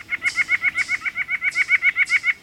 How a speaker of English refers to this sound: By comparison, the calls of the larger white-breasted nuthatch have a louder, more honking quality.